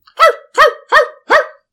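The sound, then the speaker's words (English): A dog barks four times in a steady, evenly spaced rhythm, each bark sharp and loud, with brief silences between and no voices. “Back off, or the dog barks louder.”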